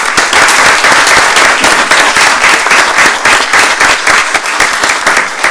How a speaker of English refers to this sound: I think it deserves another round of applause, quite honestly.